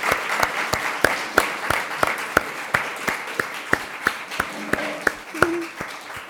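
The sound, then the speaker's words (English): An audience applauds steadily for Cyrus as he leaves after giving a speech at an event, a dense wash of clapping with several sharp, prominent claps cutting through at a regular pace. No one speaks over it. “Let's give Cyrus another round of applause as he leaves.”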